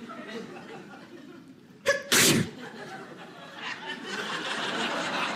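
A single loud, sharp sneeze bursts out, a quick breathy intake followed by the explosive 'choo', set against a low, steady background murmur.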